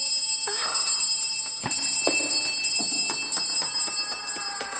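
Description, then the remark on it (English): A bell rings over and over in a steady, insistent pattern, its bright metallic tones sustained and overlapping, with sharp strikes recurring every half second or so and no voices. “Why does it keep ringing?”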